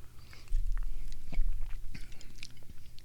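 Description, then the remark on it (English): Quiet mouth sounds of someone sipping Bullshine Seven Roots Herbal Whiskey, a local whiskey from Bullshine Distillery in Baltimore, from a glass: soft slurps, small wet clicks and a swallow over a low steady hum, with no talking. “Take a sip, see what you think.”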